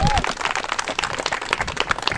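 A crowd at Camp Timeout breaks into steady applause, many hands clapping at once in a dense, continuous patter that stays fairly loud for a couple of seconds.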